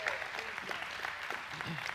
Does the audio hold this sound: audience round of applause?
yes